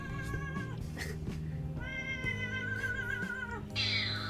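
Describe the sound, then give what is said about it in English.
An agitated cat lets out long, drawn-out meows and yowls, wavering in pitch and loud, over a steady low hum, with a harsher cry near the end. “That's a pissed off cat.”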